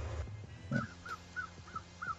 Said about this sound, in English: See, even the crows want to say something. They said it's trash.